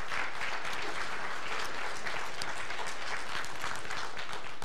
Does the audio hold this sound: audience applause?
yes